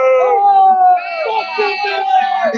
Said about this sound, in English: Oh, what's going on there? Are they booing the Raiders trade?